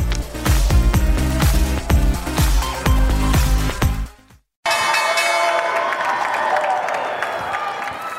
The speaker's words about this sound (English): That is the Olympic softball team ringing the opening bell. It's Friday, the end of the week, end of a week of trading here on Wall Street.